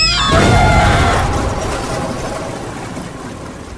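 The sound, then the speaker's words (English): A loud car crash in a snowstorm, caused by a car travelling too fast for the weather that ran a red light, bursts out suddenly with a heavy impact and shattering glass, then a long rumbling, crackling decay as debris settles. No one speaks. “No matter how careful the mother was driving, someone else was traveling too fast for the weather conditions and didn't see the red light.”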